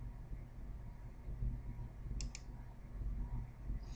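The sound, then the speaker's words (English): Two quick, soft computer mouse clicks in close succession, like a brief double click, made to display a candidate in a software program, heard against a low steady hum with no one speaking. “And so even though there's just one candidate, we could ask it to show that candidate by clicking here.”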